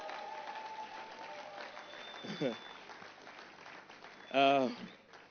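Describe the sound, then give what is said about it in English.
A church audience applauds the dedication of two newly released books in a steady, dense patter of clapping for several seconds, broken by two brief voiced shouts or cheers, the second louder, rising above the applause. “We're dedicating two of my books that just came out. Clap now.”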